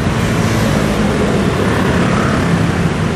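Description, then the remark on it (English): A buzzing small engine, like a scooter, drones loudly and steadily over a constant low hum of background traffic on the Taipei Bridge, one of the busiest traffic spots, with more than one scooter, no voices and no clear rise or fade over the few seconds. “Okay, so if I'm correct, I heard the low, constant hum of background traffic and then one scooter going, hurr.”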